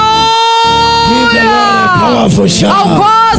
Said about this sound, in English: Can somebody shout hallelujah? And give the Lord a powerful shout. Come and shout hallelujah.